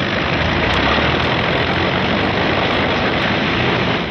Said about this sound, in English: Out on the line, General Moore's P-51s are warming up for the longest fighter flight on record.